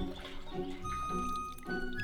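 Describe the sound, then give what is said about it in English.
Water pours steadily into sealed bags packed with scalded wild potherbs, a continuous gurgling fill with faint rising tones as it fills, heard alone without any talking. “After being scalded in boiling water, the wild potherbs are put in cool water and then packed in sealed bags filled with water to keep their nutrients and moisture.”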